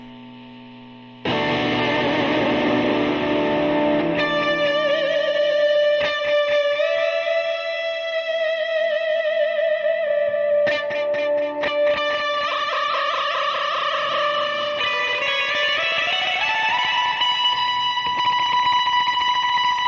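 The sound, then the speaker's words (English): Distorted electric guitar fitted with a Vega Tram tremolo, played alone, sustained notes warped by the tremolo arm, with pitch slowly sliding and wavering, then sharp strummed chords and a final upward bend, loud throughout. “It's an amazing, amazing tremolo. It's actually my favorite. That's actually why I'm playing this guitar, because I slapped it onto this guitar, and it's on this one.”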